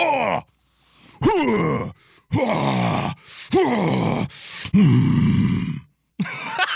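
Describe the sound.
A man lets out a series of loud, rough growling groans in quick bursts, each rising then falling, with brief silent gaps between them and no words spoken.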